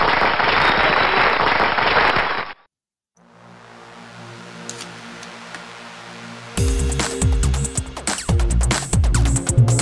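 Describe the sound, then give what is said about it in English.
A dense burst of crowd applause introducing Galnet News Digest roars for about two and a half seconds, then cuts off abruptly; a low steady hum follows before a louder, busier layered sound takes over. “Please, a round of applause for Galnet News Digest.”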